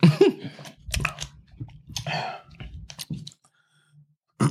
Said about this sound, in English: More chip chewing?